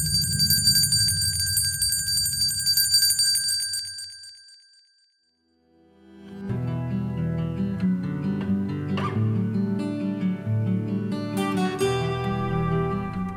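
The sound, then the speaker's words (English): Bright, sustained bell-like chimes ring over a low droning texture for about four seconds, then fade to silence before a fuller musical passage with shimmering tones begins. “Let's allow the chimes to guide us.”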